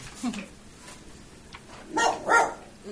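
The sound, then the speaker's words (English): A dog barks twice in quick succession, two sharp, fairly loud barks close together, standing out against faint background noise before them. “We have a dog.”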